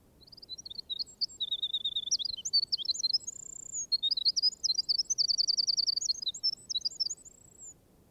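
A wren sings a long, rapid, bubbling song of high trills and warbles, pouring out continuously and clearly over a low background hiss, with no voices present.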